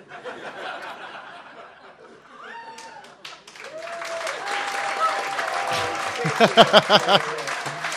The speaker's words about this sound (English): Thank you very much for that warm round of applause.